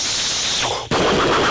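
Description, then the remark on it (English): A voice imitates fireworks being lit and going off, with a breathy whooshing burst, a brief dip, then another loud popping rush of noise, forceful. “And so we're there, and he's lighting them, and they're just going, shoop, poof, shoop.”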